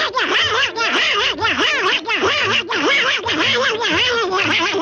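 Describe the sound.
A voice imitates Donald Duck saying 'Hail Hitler' from a satirical propaganda cartoon, sputtering in a raspy, nasal, quacking babble that runs continuously and loudly with a rapid warbling rhythm.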